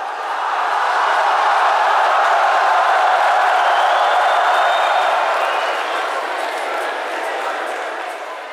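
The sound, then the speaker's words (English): A large crowd at an Olympic high jump cheers and roars continuously as a new Olympic record is posted, a dense wall of excited voices that swells steadily and then slowly fades toward the end. “And when the results are posted, a new Olympic record, the hushed, confused crowd goes wild.”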